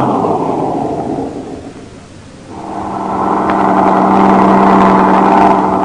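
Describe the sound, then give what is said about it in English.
A heavy truck engine rumbles, eases off for a moment, then revs back up into a loud, steady drone as the truck pulls out of a line of trucks and over to the side. No one speaks. “Pull the truck out of line, over to the side.”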